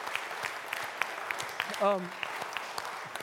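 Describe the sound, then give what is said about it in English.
A church crowd claps steadily for the house church pastors in a dense, crackling wash of applause, with a single voice letting out a brief rising whoop partway through. “Yeah, please give a round of applause for our house church pastors.”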